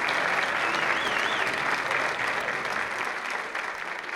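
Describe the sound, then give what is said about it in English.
A standing crowd claps steadily in a dense, sustained round of applause, loud and even throughout, with a faint whistle briefly rising above the clapping near the start. “Ladies and gentlemen, let's all stand and give a nice round of applause.”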